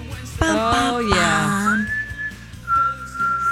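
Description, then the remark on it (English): Someone whistles an eerie, scary, wavering tune for Friday the 13th on the radio station My Talk 1071, notes sliding and bending downward, then holding a long thin tone that fades out, with faint background sounds beneath. “Scary. Scary whistle.”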